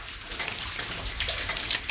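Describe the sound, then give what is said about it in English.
Water splashes and gushes steadily from a light, hand-operated double-action pump in rural Colombia that keeps the piston stationary and lifts a pipe of plastic tubing, fairly loud, with small surges in the flow and no voices. “Instead of raising and lowering a heavy piston inside a pipe, this one lifts the piston stationary and lifts the pipe made of plastic tubing.”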